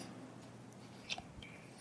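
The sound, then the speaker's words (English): Quiet crunchy chewing of locusts being eaten, with a couple of crisp bites standing out briefly against soft mouth sounds and no talking. “Why are locusts always so crunchy?”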